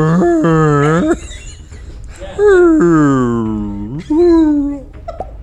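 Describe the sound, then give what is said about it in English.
A person vocally imitates a whale call meant to tell a whale to remain calm while its collar is removed, making three loud, drawn-out moaning tones that slide and waver in pitch, ending with a short higher squeak. “is to create the whale call that will tell the whale what she is trying to tell him.”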